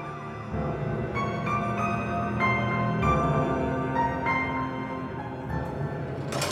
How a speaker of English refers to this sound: Red and blue flashed slivers across her face. Then he heard it. The whir of police sirens.